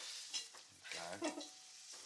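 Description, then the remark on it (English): Butter sizzles and crackles with a steady, soft hiss in an old frying pan, with a little more butter added as the food is flipped over so it doesn't burn, while a utensil occasionally scrapes and stirs against the pan. Fairly quiet, with no talking. “So, look, we're just going to flip them over, but I'm just going to add a tiny bit more butter so they don't burn.”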